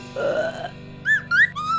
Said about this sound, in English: yes, it comes out as a burp.